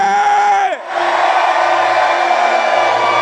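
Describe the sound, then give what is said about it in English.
A single voice cries out with a falling pitch, then a large church audience erupts in loud, continuous shouting and cheering, giving the Lord a big shout, holding steady to the end. “Now I want you to give the Lord a big shout.”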